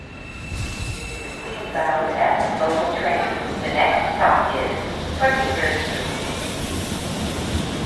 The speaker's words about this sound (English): Two train rides and now I'm on the E to Queens. Local this time of night, so it's making every stop.